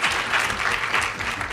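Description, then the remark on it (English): An audience at a live talk claps steadily for the Mayo Clinic, their home institution, a dense, continuous patter of many hands at moderate loudness with no gaps, sustained throughout the short stretch. “This is where I usually pause for cheap heat, so you guys can applaud at your home institution.”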